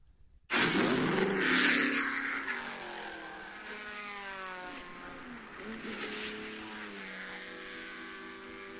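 A car engine, a Ferrari 456 GT, starts up with a loud roar, then settles into a steady, rich drone. Its pitch dips and rises gently as the revs change, with no voices.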